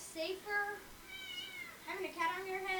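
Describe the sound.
A cat sitting on a person's head meows several times in drawn-out, wavering cries, fairly loud, with a low murmur of voices faintly underneath.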